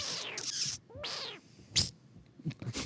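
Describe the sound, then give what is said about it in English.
A voice imitates a miniature video-game spider death sound: a series of high-pitched, squeaky chirps and descending squeals, fairly loud, with short raspy bursts between them, like a tiny creature's thin, warbling death cry. “Sounded like a freaking, like, miniature spider death sound from Minecraft.”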